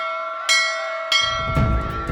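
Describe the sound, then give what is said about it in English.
A galley bell rings with two sharp strikes about half a second apart, its bright metallic tone sustaining throughout, while a low rumbling noise rises underneath toward the end. “Ma raised her handkerchief and the galley bell rang out.”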